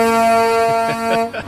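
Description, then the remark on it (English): A truck horn blares at the start of a press conference in one long, loud, steady honk lasting over a second, with faint voices murmuring underneath before it cuts off. “Now, do they start every press conference with that horn honking?”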